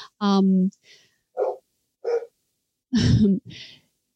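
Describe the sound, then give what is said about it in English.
Puppies bark and yelp, about five short, high-pitched yaps spaced irregularly over a few seconds, the second-to-last the loudest, with no talking alongside. “I know that your little puppies agree with that.”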